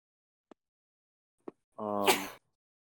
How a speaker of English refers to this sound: Bless you.